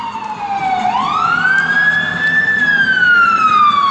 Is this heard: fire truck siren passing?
yes